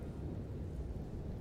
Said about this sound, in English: Outside, you can hear the drizzle of rain, the occasional clap of thunder, a stroke of lightning that splits the sky.